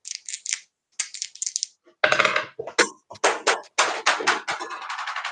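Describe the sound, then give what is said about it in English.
Dice, including three extra dice added for a roll in a game, rattle briefly in a hand, then tumble and clatter across a hard surface in a run of sharp clicks and knocks, with no voices over them. “I'm gonna use 3 more dice.”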